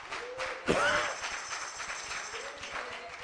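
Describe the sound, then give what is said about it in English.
A church audience claps in praise of God in a dense, steady patter of hand claps, with a voice calling out over the applause near the start and a brief vocal rise later. “Give God a hand clap of praise about that.”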